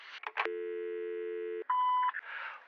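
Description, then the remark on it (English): A telephone line gives a steady electronic tone, then a brief higher two-tone beep, as a call goes unanswered, framed by short bursts of noise like a handset being handled. No voices are present. “Why do you never pick up your phone?”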